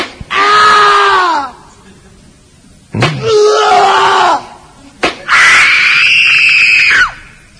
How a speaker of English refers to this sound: Well, I know. Screams happen at this borderline of pleasure and pain.